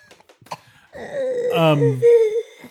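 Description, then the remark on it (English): A few short, sharp coughs, then a long strained, wheezing vocal groan, as a voice acts out a character's choking coughing fit. “As Lawrence starts their coughing fit,”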